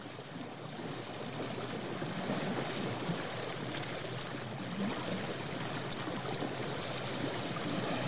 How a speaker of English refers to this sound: How about chill waves and wind and leaves?